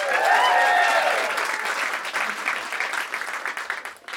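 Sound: audience cheering and applause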